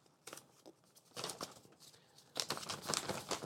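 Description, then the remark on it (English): A paper invoice from a vet being unfolded and crinkled, with irregular bursts of crisp rustling and crackling that grow busier toward the end, no voices present. “It's the usual stuff, except I also have this piece of paper here. This is an invoice from my vet.”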